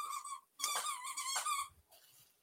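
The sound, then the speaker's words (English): A puppy lets out a few high-pitched whiny whimpers with a slight growly edge, coming in two or three drawn-out bursts with brief pauses between. “Thank you, puppy.”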